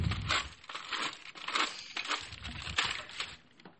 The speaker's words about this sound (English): Okay, and I've got more boxes that I can throw in the trash. There we go.